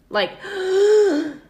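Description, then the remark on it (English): A voice imitates the strained, forced exhale of someone struggling to breathe: a sharp breathy onset followed by a drawn-out, groaning push of air that sags in pitch at the end, fairly loud. “And he heard someone do a forced exhale.”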